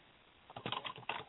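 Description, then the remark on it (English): Rapid, clattering keystrokes on a computer keyboard, a quick burst of fast typing after a brief quiet moment, with no one talking, as someone searches Google. “I cannot remember for the life of me as you hear me typing feverishly.”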